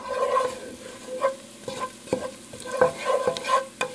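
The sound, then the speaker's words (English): Two teaspoons of cumin and about half a teaspoon of chili powder sizzle and fry with garlic in a hot pan as they sauté together. A steady crackle is broken every half second or so by the scrape and knock of a utensil stirring. No one speaks. “Let that sizzle for about a minute.”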